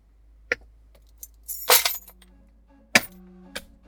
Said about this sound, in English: Oh, the keys definitely gotta go. Little jingly bitches.